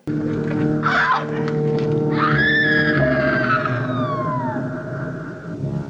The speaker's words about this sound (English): As she backs up until she's like backed up against the ledge, at which point the creature pushes her and we hear her scream get quieter as she falls.